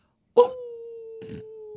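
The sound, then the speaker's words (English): A person howls like a dog, imitating the TikTok dog, one long steady sustained tone starting with a sharp burst, with brief breathy noise partway through the held note. “Enough with the fucking animal noises.”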